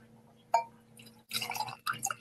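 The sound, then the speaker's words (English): Red wine, a 2018 vintage from the Castilla y León region, poured as a taste into a glass in short, gurgling splashes with a bright glassy ring, starting with a quick trickle and then two fuller pours, fairly quiet. “So we're going to go ahead and just pour a taste of this.”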